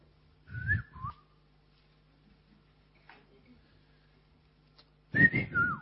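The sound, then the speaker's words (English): A person whistles sharp calling notes: a quick two-note whistle, a pause of a few seconds, then a longer whistle that rises and drops in pitch, fairly loud. “No, some people call their children with whistle.”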